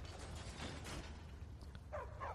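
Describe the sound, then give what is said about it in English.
A heavy mechanism grinds and rumbles steadily as a lever is pulled to open a gate behind a throne, on the east side of the room, with a couple of brief creaking squeals near the end; fairly quiet, no voices. “We have a lever to open a door behind the throne that the Draugr was slumped over in.”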